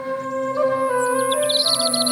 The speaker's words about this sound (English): Birds chirping.